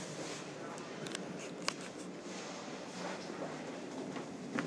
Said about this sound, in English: Holy shnikes, I'm on a train full of sleeping people. Each car has at least 4 sleeping people.